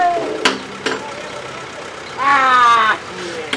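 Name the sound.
truck engine running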